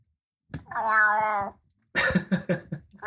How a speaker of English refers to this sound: Let's have a little Bernie for those of you that don't know him. Yeah. Really? Wow. That's a new kind of meow, buddy.